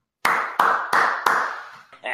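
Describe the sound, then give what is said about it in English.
A short burst of studio-audience applause sound effect welcoming guests on the show Morning Gratitude: four sharp, loud surges in quick succession, each fading into a dense wash of noise, then a brief softer sound right at the end. “The studio audience, I know is clapping out there for you guys.”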